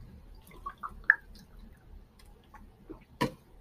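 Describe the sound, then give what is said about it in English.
Someone drinks water from a bottle to rehydrate after a workout: soft gulps and small wet clicks, then a sharper crinkling snap near the end, all quiet, with no talking. “Oh no, I only got one more sip of water left in my bottle.”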